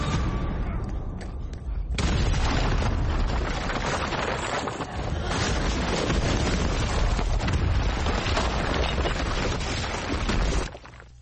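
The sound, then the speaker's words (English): An explosion in a played video clip: a loud, sustained explosion roars up after about two seconds of rumbling lead-in, a dense crackling blast with thundering low rumble that continues for several seconds before cutting off abruptly. “Here's the explosion for the chat room watching it live on Crowdcast.”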